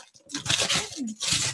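Wrapping paper on a present is torn open in two loud, rustling rips, the first longer and the second shorter after a brief pause, with a hint of voice underneath.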